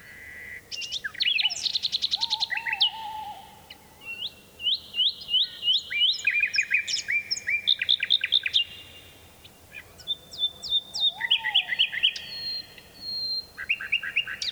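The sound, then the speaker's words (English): A nightingale sings alone across a deep valley in Dorset, England, recorded at Funtmel Magna in 1982: varied, rapid phrases of repeated chirps, trills and liquid whistles, clear, with short pauses between bursts over a quiet background. “It's from the British Trust for Ornithology, Nightingale Appeal CD.”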